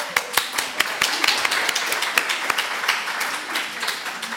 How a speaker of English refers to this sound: The ongoing work of the Burren Junction CWA and the CWAs across the board need to be thanked for the work they do to help our communities. We should clap.